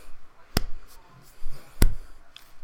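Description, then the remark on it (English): Two sharp hand claps, made during an energy-rooting visualization, evenly spaced a little over a second apart, each a crisp slap ringing out against a quiet background with faint rustling between them. “So as I do this, I clap.”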